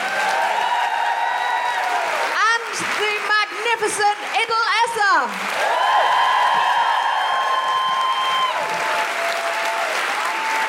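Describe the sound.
Sustained audience applause, a dense, steady clatter of many hands. A voice briefly speaks over it midway, then the clapping carries on just as strongly to the end.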